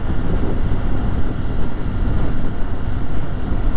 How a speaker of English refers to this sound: The XR150 feels very at home as a commuter, cruising casually at 50.